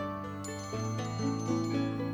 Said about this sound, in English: That jingle sound came from a small silver bell that he wore on his collar. The boy tied it there one day because Rocky was pestering the birds at the feeder and it helped give them a little warning.